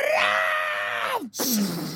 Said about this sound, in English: I'm gonna like scream as I run towards this. Enough of this!